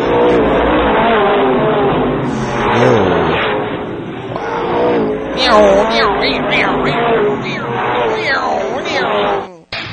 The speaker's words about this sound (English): Yeah, that's what the action was like this weekend out at the races at your local racetrack.